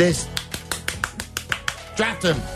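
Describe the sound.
Rapid, evenly spaced hand claps, about a dozen sharp smacks in quick succession, with voices sounding over them, especially toward the end.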